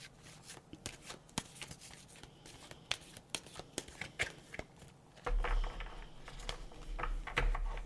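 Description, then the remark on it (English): Cards being shuffled: a run of quick crisp flicks and taps, then a denser, louder riffling rush near the end, with no talking. “I'm just going to shuffle the cards.”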